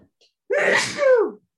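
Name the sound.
sneeze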